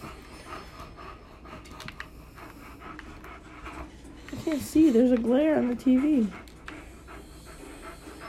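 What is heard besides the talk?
dog panting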